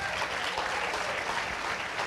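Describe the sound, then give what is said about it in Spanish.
A crowd claps steadily for Jesus, a dense, even patter of many hands at a constant moderate loudness with no voices over it. “Can we give him a hand?”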